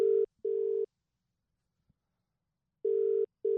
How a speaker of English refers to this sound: He's been told the phone's going to ring, apparently. Best laid plans. You ringing? Oh, it's ringing. This is exciting.